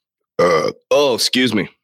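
burp

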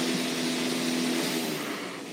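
coffee maker running

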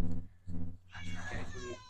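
cat meowing

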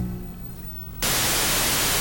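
TV static

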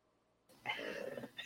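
cat purring

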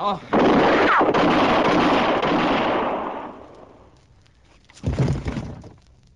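gunshots

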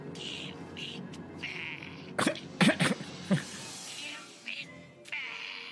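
throat clearing

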